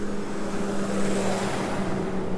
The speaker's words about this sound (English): That truck pass.